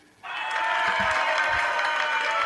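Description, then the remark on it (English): Recorded crowd applause and cheering played from a phone soundboard bursts in after a brief quiet moment, a dense, sustained wash of clapping and whoops that stays steady throughout. “That's our crowd. That's my soundboard. It's my phone.”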